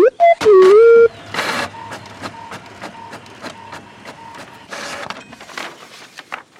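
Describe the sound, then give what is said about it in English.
A printer starts up with a few rising electronic tones, then prints a page, a plane ticket to Los Angeles, with rapid rhythmic clicking, whirring and bursts of paper-feed noise, moderately loud and without any talking. “Bezor, would you please print it out for me?”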